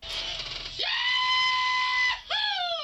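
A played recording of a loud, high-pitched rebel-yell whoop, introducing Rebel Yell whiskey: a man's voice swoops sharply upward into one long held cry, breaks off, then leaps up again in a shorter second whoop, alone.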